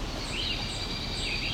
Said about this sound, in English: So you're hearing pine warbler, the trill, red-eyed vireo, pretty much constantly.